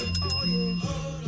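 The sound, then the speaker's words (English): A small bell dings twice in quick succession, its bright metallic tone ringing on and fading slowly, with a low steady hum underneath. “And you heard the little bell ding, and that is my co-host, my sidekick, Taco the motherfucking Bell.”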